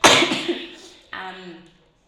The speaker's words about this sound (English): speaking of that, if I do cough, I apologize because I got bronchitis in February and then did this challenge and gave myself asthmatic bronchitis.